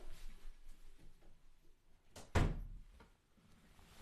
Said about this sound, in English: let me shut the door.